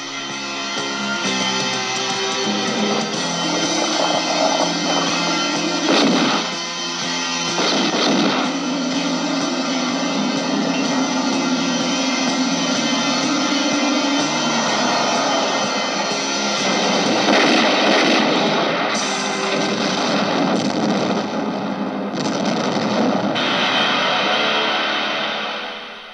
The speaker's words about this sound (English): Yep, that was the trailer. Yeah, it was a whole lot of explosions. Guys going, ah!